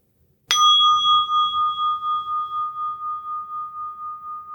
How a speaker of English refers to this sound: Let's invite the bell before we begin today.